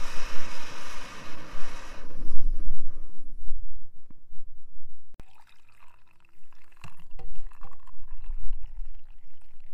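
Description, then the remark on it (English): Water pours noisily into a kettle for a few seconds, a broad rushing splash that stops abruptly, followed by quieter clinks, drips and handling sounds. No one speaks. “I think it's time to put the kettle on.”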